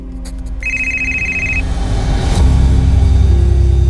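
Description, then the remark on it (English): A phone rings once with a steady electronic tone lasting about a second, heard over a low background rumble that swells louder afterward. No one speaks. “Armed with a pencil, she makes some annotations on the pages when her phone rings.”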